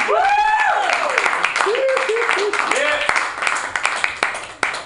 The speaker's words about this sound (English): Let's clap it up for Sean Penn, San Francisco.